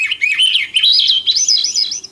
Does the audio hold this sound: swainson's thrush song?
yes